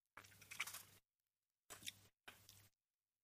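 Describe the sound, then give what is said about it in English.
Three crisp, crackly crunching bursts from someone biting and chewing a chip with Szechuan sauce near a microphone, the first longest and loudest, then two shorter ones after a brief pause, with silence between and no talking. “I'm going to try to not crunch in the microphone.”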